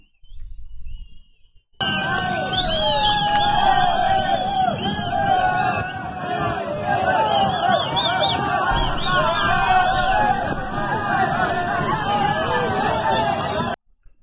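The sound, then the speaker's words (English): A large crowd of people riding on top of a cargo train heading across the Mexico border for the U.S. cheers and yells, dense overlapping voices shouting and whooping loudly and continuously for about twelve seconds, starting and stopping abruptly after a brief faint rumble. “Cheers and yells could be heard from many of the people who boarded the train in the footage of the occurrence that went viral.”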